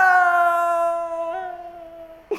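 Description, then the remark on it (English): A person imitates the scream of someone falling a very long way down a hole, with a single long, high, steady voiced wail that slowly weakens and fades over about two seconds, ending with a brief soft thump. “Everyone else, you hear Egbert scream.”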